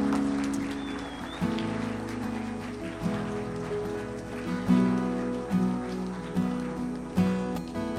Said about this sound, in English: Can we just give the Lord a clap offering of praise today?